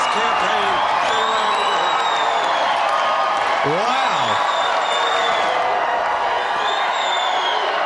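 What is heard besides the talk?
large crowd cheering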